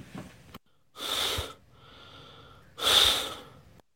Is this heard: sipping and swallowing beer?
no